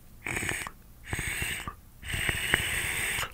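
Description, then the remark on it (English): Three drags on a vape set to 420 degrees with a 0.6 ohm coil, the last one longest, each a hissing draw of air peppered with wet, crackling gurgles and pops from the atomizer. No one speaks. “You hear the gurgle?”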